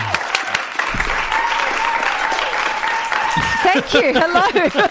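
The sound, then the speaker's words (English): Steady audience applause on the Joy 94.9 show Oscars Chatterbox as guests are welcomed, a dense crackle of many hands clapping at a loud, even level, with voices starting to speak over it toward the end. “you're spoiling the fact the applause isn't over yet.”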